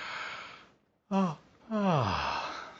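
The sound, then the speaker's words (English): A person yawns: a breathy intake, a brief pause and short vocal burst, then a long drawn-out voiced yawn sliding downward in pitch as it fades. “There'll be a commercial with everybody's yawning, and the next thing you know, you're yawning.”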